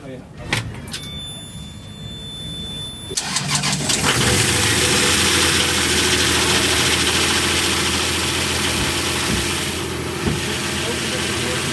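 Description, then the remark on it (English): A 60 horsepower Nanni diesel boat engine turns over and catches a few seconds in, then settles into a loud, steady idle, its low rumbling throb continuing unbroken to the end. “This engine now is it's a nanny diesel. Right, 60 horsepower.”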